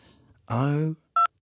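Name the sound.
telephone keypad dialing tones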